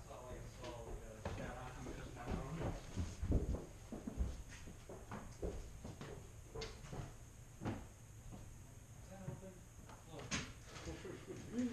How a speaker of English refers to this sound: Shut the door. Just swing it.